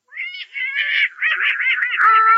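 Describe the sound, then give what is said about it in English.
A voice imitates a duck named Herman with a continuous run of nasal, warbling quacks, high-pitched and fairly loud, rising and wobbling for a couple of seconds with no other talk. “Oh, it's my darling little duck.”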